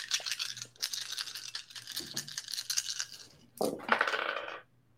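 Seven dice clatter and rattle together in a shaker, then tumble out onto a hard surface with a louder burst of clicking before stopping, rolled for a persuasion roll in a game. Fairly loud, with no talking.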